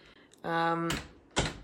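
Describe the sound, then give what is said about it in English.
A door creaks with a brief squeal, then shuts with a sharp thump, followed moments later by a second latching knock. “I'm gonna close my door.”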